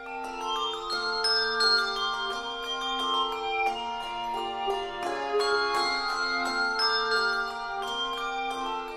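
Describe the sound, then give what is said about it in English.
The Sonos Handbell Ensemble plays a steady, flowing melody on a mix of Schulmerich and Malmark handbells, with many ringing bells struck in quick succession and overlapping as each tone sustains. The sound is clear, with no voices. “This is the Sonos Handbell Ensemble, one of the few choirs that mixes Schulmerich and Malmark bells.”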